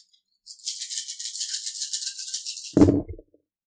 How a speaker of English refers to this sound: And I roll off the dice.